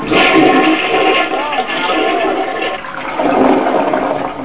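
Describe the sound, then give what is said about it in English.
A toilet flushes, a steady rushing, gurgling roar of water that holds for a few seconds, dips briefly, then surges again, with no one speaking. “She flushed the baby down the toilet.”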